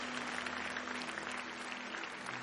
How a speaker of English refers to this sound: Give Jesus a hand clap.